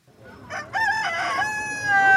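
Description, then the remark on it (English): A rooster at a chicken shop in Nairobi, Kenya, crows once, a loud cock-a-doodle-doo with a short opening note and a long, drawn-out final call that trails off. “Javed Malonzi's mandazi stand is right next to the chicken shop.”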